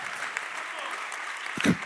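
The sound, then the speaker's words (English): An audience claps steadily, a dense, continuous wash of many hands at an even loudness, with a brief voice rising over it near the end. “Come on, that's it. Clap your hands.”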